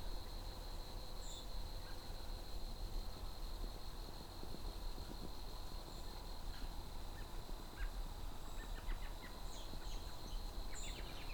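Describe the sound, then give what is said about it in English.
Quiet outdoor ambience with a steady high insect-like hum, broken by a few faint, chattering bird calls, an American robin's laughing-like calls, clustered mostly near the end. “Robins are vocal all year round. They don't sing this time of year, but they have a lot of calls.”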